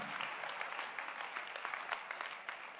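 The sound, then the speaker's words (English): A church audience claps their hands for the Lord in a steady, dense burst of applause, many overlapping sharp claps blending into a continuous wash of sound without any voices. “Give the Lord a wonderful, wonderful clap of hands.”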